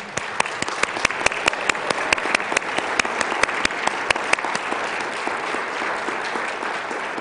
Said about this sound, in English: Could you just applaud her?